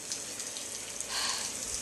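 Heavy storm rain at sea around a ship pours down in a steady, dense hiss of drops, swelling slightly louder partway through, with no voices over it.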